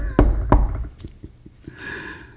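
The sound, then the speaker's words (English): Two loud knocks on a wooden surface, followed by a quick run of softer taps and a faint rustle at the end. “I'm knocking on wood.”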